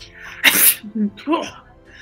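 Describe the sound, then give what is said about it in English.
A single sharp, loud sneeze, a harsh burst of breath followed by a couple of short voiced grunts and sniffles as it fades. “You just still keep coughing and spluttering and sneezing constantly.”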